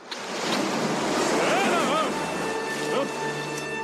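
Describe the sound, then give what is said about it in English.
Loud ocean surf crashes and rushes steadily throughout, a dense roar of breaking waves with brief vocal sounds faintly mixed into the wash. “Nothing to worry about, just a little wave.”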